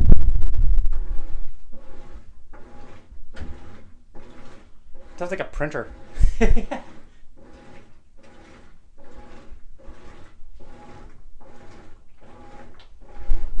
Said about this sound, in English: This is the laundry room. It sounds like a printer.